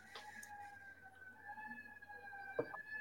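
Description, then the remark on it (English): An emergency siren wails steadily on a street with a hospital, its tone holding level through the stretch, faint and continuous beneath low background noise with a brief knock near the end. “I love the fact that you guys just have sirens all the time.”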